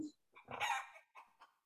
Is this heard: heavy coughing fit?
no